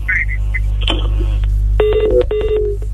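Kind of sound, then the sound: signal or alarm, telephone dialing tones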